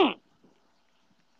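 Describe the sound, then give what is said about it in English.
A single loud, abrupt sneeze bursts out at the start, a quick sharp blast that cuts off almost at once, leaving only faint low murmurs and quiet afterward. “Bless you.”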